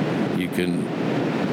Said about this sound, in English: Just going to step out here into the wind and talk for a moment. When I stand and look at the Pacific Ocean, this morning it is gray.